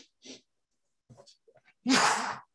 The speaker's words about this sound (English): That was a good sneeze. Now I'm all cleared up.